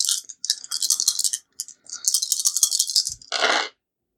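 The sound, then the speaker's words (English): Eight-sided dice rattle in a cupped hand in quick, bright bursts for a few seconds, then a soft thud and a short clatter as one tumbles to a stop. No one speaks. “Well, I've got 5 8-sided dice. I'll roll one of them twice.”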